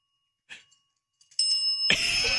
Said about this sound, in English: So a guy trained his two cats to ring a bell every time they wanted a treat. It's one of those videos you just get caught watching over and over again.